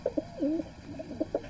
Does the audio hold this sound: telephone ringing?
no